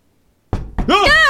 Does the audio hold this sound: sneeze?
no